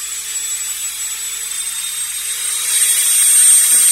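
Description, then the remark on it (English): A dentist's drill whirs with a steady, piercing high-pitched whine as a patient's tooth is drilled, running continuously and swelling slightly louder toward the end, with no talking. “Okay, I'll start drilling. It's only going to take a second.”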